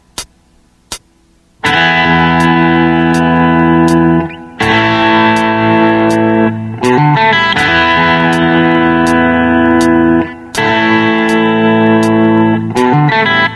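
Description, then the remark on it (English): A slow, sustained distorted electric guitar lead plays long held notes in a few phrases with brief gaps, opening with a couple of sharp clicks; no one speaks. It is Example 1 of the Texas Chainsaw Lead Guitar Concepts lesson, played at a slow tempo. “I will be demonstrating the lesson Texas Chainsaw Lead Guitar Concepts, a private lesson with Eric Johnson.”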